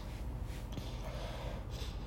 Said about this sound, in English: I got a cold, so don't mind me sniffles.